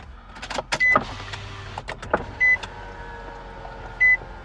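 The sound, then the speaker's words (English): A car's power window rolls down with a brief low electric whir on a hot day, surrounded by clicks and thumps, while three short high-pitched beeps sound at intervals. No one speaks. “I'm going to roll the window down a little bit more.”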